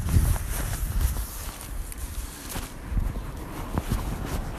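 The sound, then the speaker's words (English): Steady footsteps of a person walking home from Wimbledon, past Wimbledon Chase Primary School, on a hard outdoor surface, each step a soft tap in an even rhythm over a constant low rumble of street ambience. “So you're getting the normal Walk the Pod route backwards today, because I've been into Wimbledon and now I'm walking home.”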